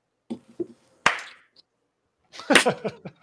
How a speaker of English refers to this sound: Hey, that kind of slap hands.